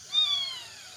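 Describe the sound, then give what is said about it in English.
A young male rusty spotted cat, nearly fully grown, gives one thin, high-pitched meow that slides gently downward in pitch and fades out, fairly soft, with no other sounds around it. “A rusty spotted cat.”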